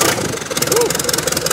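A flooded tractor engine sputters to life and settles into a rough idle, its steady, rapid chugging loud throughout the short moment, as a mechanic crew in the Sumas Prairie area near Abbotsford revives flood-hit tractors.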